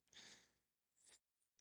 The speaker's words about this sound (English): Sorry, got a cough.